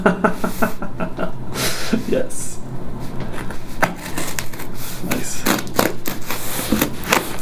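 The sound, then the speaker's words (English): Scissors slice open a shoebox-size parcel wrapped in lots of tape, giving a steady run of sharp crackling snips and tearing tape, fairly loud throughout, with a couple of brief spoken words in the middle. “So in a very unsafe manner with those scissors.”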